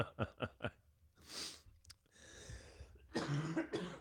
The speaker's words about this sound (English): All right, there's cough number one.